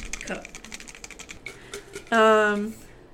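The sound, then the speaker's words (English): Paper question slips rustle and rattle quickly inside a cup as it is shuffled for about two seconds, fairly busy, followed by a short, loud sustained vocal sound. “I was shuffling the cup of questions.”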